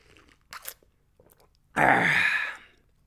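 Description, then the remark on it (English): A few soft, quick slurps of a second cup of coffee being sipped, followed by a loud, breathy exhale, with no talking. “Quick sip of coffee.”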